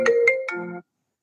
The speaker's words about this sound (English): Put the old phone on do not disturb. Rookie mistake.